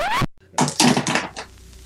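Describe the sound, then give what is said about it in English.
A pencil drops onto a hard surface, making a short clatter of several quick, bright bouncing taps that fade within about a second, following a brief tonal sound. “I dropped my pencil.”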